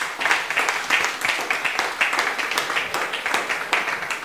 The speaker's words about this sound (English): Someone give the Lord a clap of hands.